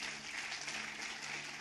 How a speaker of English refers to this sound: It's another day where we are celebrating the men in Lighthouse. Can we give the men in Lighthouse a round of applause again?